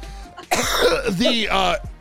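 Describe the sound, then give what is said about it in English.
A hard coughing fit: a second or so of loud, raspy coughs running together with a strained, voiced edge, then a short gasp at the end. “I'm gonna piss myself if I cough this hard.”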